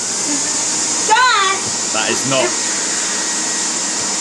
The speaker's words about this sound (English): That is not a great sound for a podcast, is it? The sound of a vacuum cleaner. Yeah, that's not great.